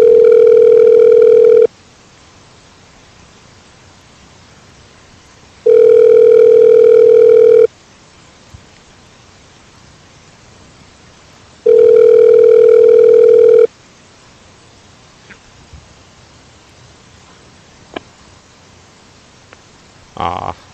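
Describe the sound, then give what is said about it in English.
A telephone ringback tone on a call repeats three times, each steady, bright electronic burst lasting about two seconds with roughly four seconds of quiet between, followed by faint clicks and line noise. “It's ringing.”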